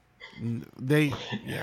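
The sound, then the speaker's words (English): A person coughs after smoke is blown into the microphone, a short voiced sound followed by a harsh, breathy burst that trails off into rough, throaty noise. “I just blew smoke into the mic and then you started coughing.”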